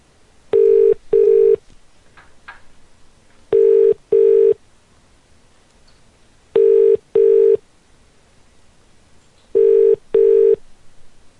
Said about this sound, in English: I like the part of the show when the phone rings.